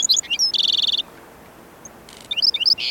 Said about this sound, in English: Yet some birds thrive in this scorching landscape. Here, a black-throated sparrow sings from the thorn scrub.